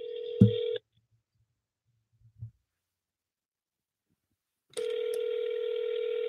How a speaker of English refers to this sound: So when I call, when the phone ring, you're actually cold calling me. Just an FYI. Okay, so when the phone ring, I'm the one who's gonna say hello.